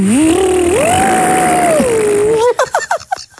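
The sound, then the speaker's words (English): A voice imitates a blender speeding up: a loud, buzzing whir that climbs steadily in pitch and holds high for a couple of seconds, then breaks into short choppy vocal bursts. “Do it again. That's it speeding up.”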